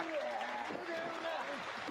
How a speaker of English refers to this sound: Fans clapping at the beginning of the match. Very nice.